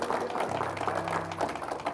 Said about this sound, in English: Oh, can we give the Lord a hand clap of praise in this house this morning?